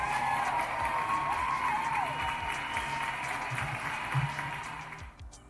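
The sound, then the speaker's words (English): A crowd applauds steadily for several seconds at a performer's request, a dense wash of clapping with a few cheers and whistles mixed in, before it fades out at the end. “Let me get an applause for that.”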